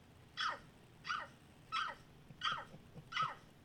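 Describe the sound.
Five evenly spaced bark-like yelps, each short and sharp with a falling pitch, from a human voice imitating a big dog barking on command. They are fairly loud against a quiet background.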